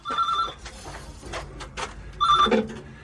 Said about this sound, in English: At the corner of an old Tudor house, there was a red telephone box. As I walked past, the phone started ringing. There was no one else around.